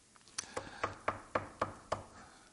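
A series of about seven sharp knocks on a door in a steady, quickening rhythm, clear against a quiet background with no talking.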